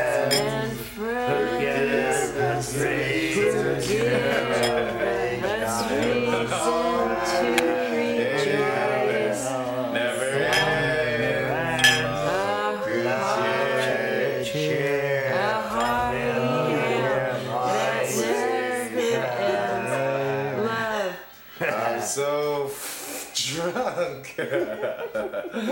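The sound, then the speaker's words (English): A crowd of voices sings a dubbed song loudly and continuously all at once, each apparently following its own tune, so the melodies clash into a dense, chaotic jumble that never lets up. “No, it's like everyone's singing a different song to each other.”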